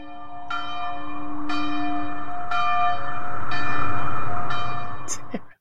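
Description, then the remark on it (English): Church bells ring out in a steady peal, five or so strikes about a second apart, each leaving a rich, shimmering hum that builds into a loud, sustained wash before stopping abruptly. “The bells, please.”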